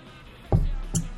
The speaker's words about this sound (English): Get a drink of water. I'm going to get a drink of water here.